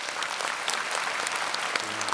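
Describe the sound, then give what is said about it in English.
A burst of crowd applause added as a sound effect by the producer: many hands clapping in a dense, steady patter that holds an even, moderate loudness for a couple of seconds without any talking. “Maybe our producer, Jay, can put some... applause in there for Angela's hard work.”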